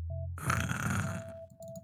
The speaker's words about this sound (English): you hear slightly synthesized snoring coming out of Occam's helmet as he's lolled back in one of the chairs